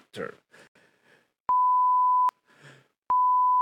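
Two loud, steady censor bleeps, each a flat high tone under a second long, cut in between short bursts of a man's speech to bleep out the name Dr. Disrespect, which is not allowed on Twitch; the second bleep runs to the end.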